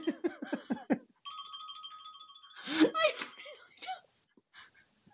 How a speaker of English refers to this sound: I really don't know how. Huh? I don't know how I'm turning it off. It just turns off. Okay, I'm gonna pick a new alarm next time.